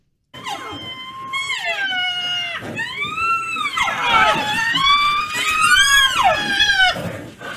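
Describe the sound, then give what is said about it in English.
Baby rhinos that were being fed milk, crying for more after the milk ran out: a continuous stream of loud, high-pitched whining squeals that rise and fall like a siren, several cries overlapping one another. “Okay, so baby rhinos who couldn't get more milk.”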